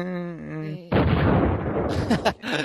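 A brief pitched, voice-like tone is cut off by a loud explosion sound effect, a dense crackling roar that rumbles on for nearly two seconds with a couple of sharper bursts near the end.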